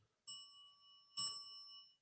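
small hand bell ringing

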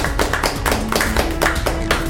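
small round of applause

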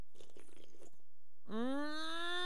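sipping a latte

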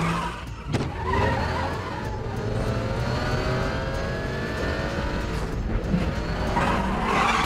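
car driving

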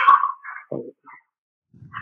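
dogs barking

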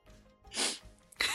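sniffing

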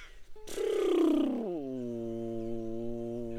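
airplane flying overhead

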